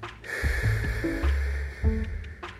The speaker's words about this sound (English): Holding on the inhale, fully relaxed. Sit nice and tall. Three, two, and one. Exhale through the mouth, nice and calmly.